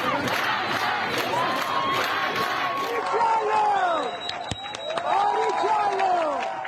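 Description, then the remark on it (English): A crowd of thousands in Iran cheers and shouts continuously as a woman without a hijab cuts her hair in defiance: a dense roar of many voices with rising and falling whoops and high yells throughout, loud and unbroken. “A woman in Iran with no hijab chopping her hair to a cheering crowd of thousands.”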